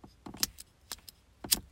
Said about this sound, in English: But here, if you can hear this lighter, hold on.